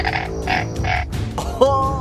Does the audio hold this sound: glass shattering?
no